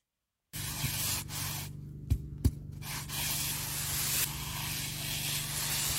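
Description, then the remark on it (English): Wet cement being cut, a steady gritty hiss of slicing and scraping that briefly thins out mid-way, broken by two short sharp clicks, then resumes evenly to the end. No voices. “Cutting wet if, cement.”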